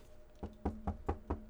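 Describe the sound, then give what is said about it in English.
Five quick, evenly spaced knocks on a door, sharp, with no voices around them. “There is a knock at your door.”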